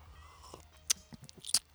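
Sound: sipping bourbon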